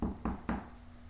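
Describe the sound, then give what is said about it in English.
Three quick knocks on a wooden surface in a steady, evenly spaced rhythm, fairly loud, each a dull thud that fades before the next, followed by quiet. “Hopefully, knock on wood.”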